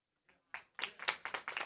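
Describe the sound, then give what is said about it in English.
Audience applause in Edgerton after news that the group is poised to be financially self-sufficient after three months: a few scattered claps, then a quick run of sharp, bright hand claps in an uneven rhythm, moderately loud, with no voices over them. “Guys, don't applaud us in Edgerton.”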